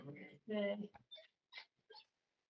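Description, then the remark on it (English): A dog whimpers and whines in a few short, high-pitched bursts, the first ones longer and tonal, followed by three brief fainter yelps with pauses between. “That dog agreed with me.”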